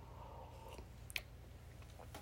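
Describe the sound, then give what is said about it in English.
Someone quietly sips a drink, with a few soft mouth clicks and small wet swallowing noises spread over a couple of seconds, no talking. “Taking a sip of my drink.”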